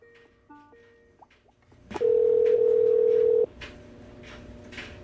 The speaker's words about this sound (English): Yeah, it was like Skype just quit on me for a second, so because I noticed the little green lights on the phone thing here went off.